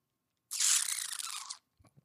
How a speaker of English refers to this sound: And I'm going to take another sip because why the heck not?